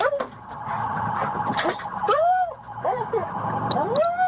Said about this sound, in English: The dog is loud, dude. She's loud. She's fun.